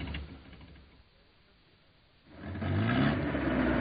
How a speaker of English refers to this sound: Okay, drop me here. And keep the engine running. We may have to leave in a hurry.